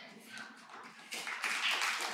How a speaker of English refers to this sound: Oh, clapping too. That's good. I like it. I like it.